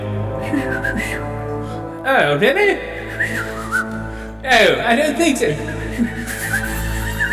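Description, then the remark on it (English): Warbling, swooping whistles mimic the Star Wars droid R2's chirps and beeps in two quick bursts, rising and falling in pitch, with a person talking throughout underneath. “Oh, what is wrong with your whistle? Oh, you broke it.”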